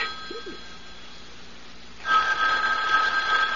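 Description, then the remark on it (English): An old-style telephone bell starts ringing midway, a loud rapid metallic trill that continues steadily after a quiet stretch with faint room noise. “aren't you going to answer it? Answer? The phone.”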